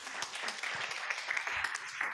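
An audience applauds, producing a dense, steady wash of many hands clapping at once that holds an even loudness for about two seconds, with no voices standing out.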